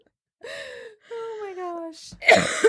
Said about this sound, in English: I'm going to try hard not to laugh so I don't cough, just so you know. Oh, my goodness. If I make a funny face, I'm laughing inside. Then I'm going to cough.